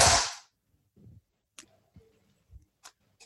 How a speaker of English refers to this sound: And if you both can take your headset off and put it to the microphone so I can try and make a clap.